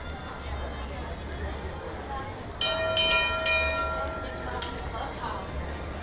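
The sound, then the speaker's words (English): The Red Car streetcar trolley rolls past on a street in Hollywoodland with a steady low rumble, then a sudden bright, metallic ringing squeal that cuts in partway through and slowly fades, followed by a short second screech. “And as we walk down the street here in Hollywoodland, the red car trolley is passing us.”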